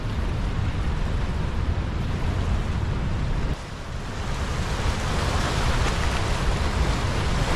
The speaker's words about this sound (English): All right, look at these falls over here. I think we can get even closer, but take a look at this.